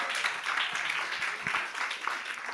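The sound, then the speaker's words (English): An audience claps in worship, a dense wash of many hands applauding at once, steady and fairly loud, filling the room without any voices standing out. “I want somebody to worship with a clap this morning.”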